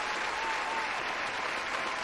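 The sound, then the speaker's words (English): An applause sound effect: steady applause from a crowd, a dense, even wash of clapping that holds at a constant level for about two seconds with no voices over it. “Basket the ambiance, because I gotta get my claps.”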